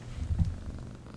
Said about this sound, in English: A little ASMR. The purring cat.